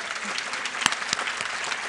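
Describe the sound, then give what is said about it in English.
A crowd claps steadily in a dense, even round of applause for Catherine, the absent organiser who ran the event for nine years, with a few sharper individual claps standing out, lasting just under two seconds with no talking. “and Catherine had been running it for 9 years, and so I think we should all, even though she's not here, give her a great big round of applause.”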